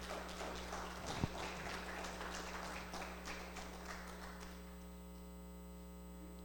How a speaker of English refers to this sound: Can we give them one more round of applause this morning?